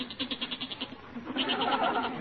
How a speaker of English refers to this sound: No, that's not my father. That's the goat. He's getting restless down in the cellar.